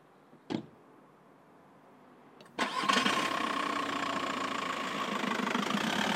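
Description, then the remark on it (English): A car door thumps shut, then after a brief pause an engine cranks and catches, settling into a steady idle that rumbles on to the end. “8 out of 10 people in the UK jump straight in a car when the weekly food shop is due.”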